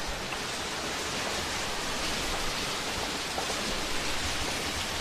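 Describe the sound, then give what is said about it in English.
Steady, dense hiss of rain heard over a speakerphone call from a car in Illinois, where it has been raining for two days. It fills the whole clip at a constant level, a broad wash of noise with no pauses and no voices. “I'm getting so much of the noise of the rain.”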